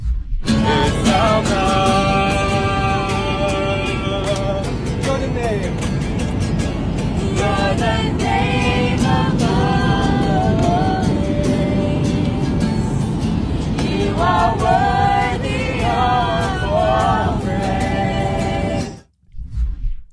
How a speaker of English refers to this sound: It's from Easter Sunday on an airplane at 30,000 feet. A group of Christian singers and a guitarist got up in the middle of an airplane and started playing modern worship music.